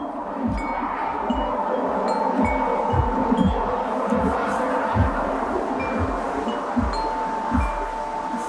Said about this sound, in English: We hear the wind chimes again here. They're those big, long tubes. They're black, and this one, I think, was like Tones of Japan. It's got those low tones that make me feel good.